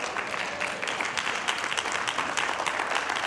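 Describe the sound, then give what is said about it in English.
A standing audience at a church service claps steadily, dense overlapping hand claps forming a continuous, even wash of applause with no voices standing out. “You can clap.”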